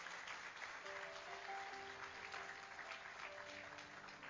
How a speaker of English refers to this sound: all of y'all, give them a round of applause because they really go all in, all above.